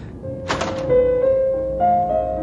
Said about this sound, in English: It's in here. Okay. Open the door.